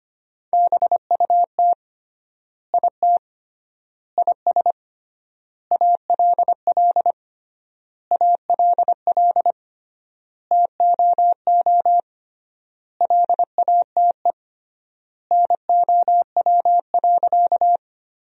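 Morse code sent at about 25 words per minute, sentences made from the top 300 words with triple word spacing: a single steady mid-pitched tone keyed in rapid dots and dashes, grouped into words separated by long, even pauses. No voices.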